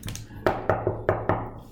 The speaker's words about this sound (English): Then there's a knock on the door.